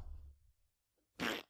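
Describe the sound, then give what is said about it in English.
A low, muffled rumble fades out, then after a short pause a single loud, sputtering raspberry is blown with the lips, a voice imitating a fart that lasts about a quarter second, mimicking the name of a character in the film Blood Feast. “That's his name, that fart noise.”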